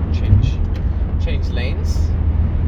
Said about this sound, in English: There's actually quite a lot of cars on the road. Again, not too many backups that I can see, but I've got a very strong sense of traffic getting back to what it used to be. Okay, got a lot of cars everywhere.